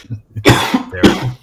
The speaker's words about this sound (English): God damn, I'll stop coughing on the fucking podcast. I'll start muting myself in a second.